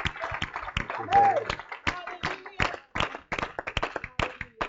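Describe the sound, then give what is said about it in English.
An audience at a bilingual Spanish-English church service claps for the Lord before being seated, a loose, uneven burst of sharp, bright smacks that keep going for several seconds, with faint voices and a brief whistle-like tone mixed in. “You may be seated if you clap your hands to the Lord.”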